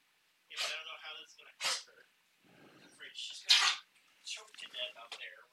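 A dog named Matilda coughs and hacks in a string of harsh, raspy bursts, trying to bring up Hamburger Helper she ate, several in quick succession with brief pauses between, fairly loud against an otherwise quiet background.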